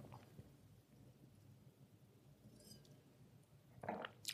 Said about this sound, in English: I just took another sip because I took one a little bit ago and I liked it so much, I took another one.